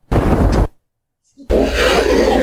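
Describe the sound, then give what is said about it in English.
A video game monster roar sound effect from the original Doom games: two loud, harsh, growling roars separated by a brief silence, full, with no one talking over them. “What is this, Doom 1 or Doom 2? All OG Doom, so Final Doom, Doom 1, all that.”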